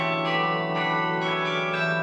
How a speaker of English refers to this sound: When this pandemic occurred about a year ago, when it began, it suddenly dawned on me that the Carillion is an instrument, if you like, ideally suited to these circumstances, because it's an outdoor instrument meant to be listened to in the outdoors